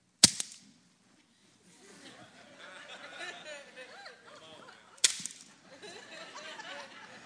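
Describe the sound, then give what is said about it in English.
Someone strikes arrows against a hard floor in sharp, crisp cracks, one near the start and another about five seconds later, with low murmuring voices filling the gap between strikes. “He said, strike the ground three times.”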